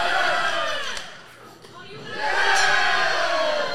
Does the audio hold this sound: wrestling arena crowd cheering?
yes